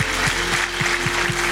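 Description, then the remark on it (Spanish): A church audience applauding to the Lord, a dense, continuous wash of steady clapping, with a sustained low tone and a regular thumping beat underneath. “Him a loud of applause to the Lord.”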